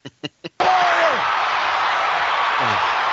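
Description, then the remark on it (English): A chair slams hard into someone, three sharp, quick impacts in a row, followed at once by a loud, sustained roar of a cheering crowd with scattered shouts. “He just got nailed by a chair out of nowhere.”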